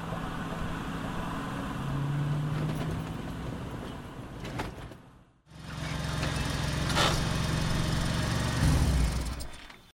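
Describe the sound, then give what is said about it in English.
A pickup truck's engine rumbles, drops away briefly midway as it pulls over by a roadside sign, then settles into a steady, throaty idle with some rattling. “Elias Ullstrom pulled over his pickup truck and stared at the sign printed in old-time rodeo-style lettering.”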